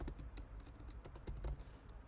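Rapid, irregular keystrokes clatter on a computer keyboard while typing in a document, fairly loud, with uneven bursts of clicks and taps over a low background hum.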